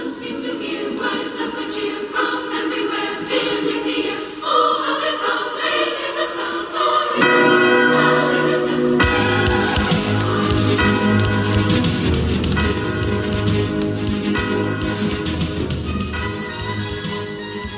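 An orchestral rendition of Carol of the Bells from the Home Alone film, with ringing bells, plays on its own, loud and full, swelling into a bigger, brighter passage about halfway through with deep low notes joining in.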